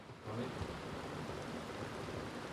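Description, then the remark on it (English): Steady, dense hiss of heavy rain pouring down on a roof in southeastern Pennsylvania without a break, a broad wash of noise that stays constant throughout, with no voices present. “It sounds like water is falling on your roof.”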